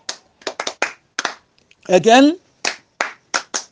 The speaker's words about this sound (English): That's good. Clap for yourself.